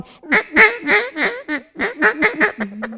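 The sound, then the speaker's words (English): A rapid series of raspy, nasal duck quacks blown on a hunting call to bring a big group of ducks in to land, about ten in two bursts, loud, ending in a short steady drone. “it doesn't sound good, but it sounds like a real duck”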